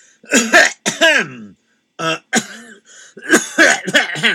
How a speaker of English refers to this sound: Don't you have to clear your throat before you start a story?